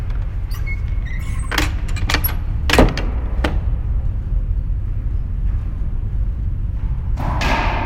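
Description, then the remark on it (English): A door being closed: a few sharp clicks and rattles lead up to one solid thud midway, all over a steady low rumble. Nobody speaks. “Shit, okay, I gotta close the door for this one.”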